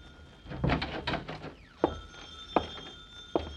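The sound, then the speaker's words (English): A telephone bell rings in three sharp, evenly spaced strikes, each leaving a ringing metallic tone that lingers, after a few muffled thumps and rustling movement. “Uh-oh, the phone.”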